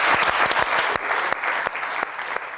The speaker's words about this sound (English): Round of applause for these guys.